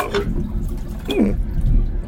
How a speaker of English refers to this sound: Oh, no, it won't flush.